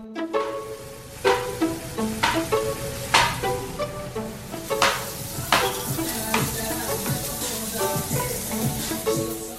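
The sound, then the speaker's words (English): Chicken sizzles steadily in a pan as it is cooked on a Sunday night, a dense crackling hiss broken by repeated sharp clinks and scrapes of a utensil stirring against the cookware. No one speaks. “So on Sunday night, we were cooking chicken.”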